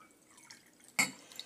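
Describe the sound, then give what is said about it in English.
A single sharp clink of an Infinity crystal decanter rings out with a bright, high tone, followed by a soft trickle and a light drip of liquor being poured from it. Faint background hiss before it, and no voices. “I am out of bottled booze, so today we're going to take a sip out of the old Infinity crystal decanter.”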